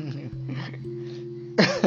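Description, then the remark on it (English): A sustained, droning voiced sound gives way to a sudden loud, harsh cough near the end, a single sharp burst, not a sign of sickness. “Yeah, this cough isn't a sign of sickness, it just, I don't know why it happened.”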